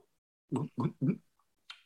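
A person makes an imitated drinking noise while tasting a coconut coffee drink: three quick, evenly spaced low throaty gulps, then a brief soft airy breath at the end.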